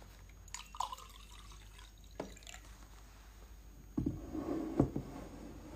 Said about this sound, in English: Okay, I'm gonna pour myself a little bit more water.